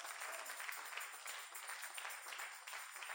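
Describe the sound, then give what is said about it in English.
A church audience claps for the Lord together in a steady, dense wash of applause lasting a few seconds, many hands blending into an even, crackling roar with no voices standing out. “Give the Lord some clap in the house.”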